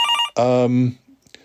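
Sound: telephone ringing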